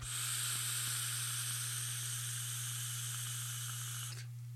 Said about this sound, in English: The Vessel is in here. Twisted Timmy's coils are in here. They are crackling like a dream.